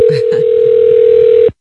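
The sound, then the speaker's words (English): A telephone dial tone, as a call is placed to a phone sex line on the Howard Stern Show, drones at one steady pitch, loud, for about a second and a half before cutting off abruptly, with faint brief murmurs near the start. “Here for your listening pleasure on the Howard Stern Show, … calls phone sex operator to have phone sex, but the only way she can get off is to discuss Trump's problems.”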